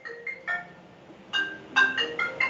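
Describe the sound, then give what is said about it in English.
A preacher's mobile phone rings during a sermon with a short melodic ringtone, a quick run of bright electronic notes that grows a little louder midway. It is moderately faint, with no talking over it. “I warned you, my phone is going to be a little crazy today.”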